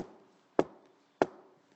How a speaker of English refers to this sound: Up ahead in the distance, he saw a shimmering light. Yep, it was the Castle Frankenstein. He came up the steps and knocked on the large wooden door.